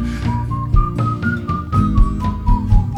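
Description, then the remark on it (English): A clear whistled melody glides over a full band track with steady drums and bass, the tune rising and falling in sustained notes throughout. “this is the …, it's the whistling track”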